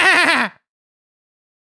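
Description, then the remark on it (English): A person imitates a sheep, as an impersonation of the Pokémon Ampharos, with a single loud, wavering bleat lasting about half a second, followed by silence and the start of another sound at the very end. “What does a sheep sound like?”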